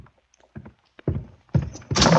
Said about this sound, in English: go to the closet. Open the door.